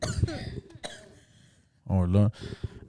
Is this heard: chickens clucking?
no